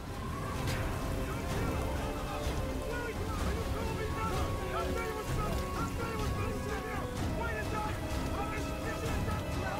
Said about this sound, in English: Another powerful image that we've been looking at is this video clip that illustrates what happens to a ship in a storm. So I want to show that to you one more time.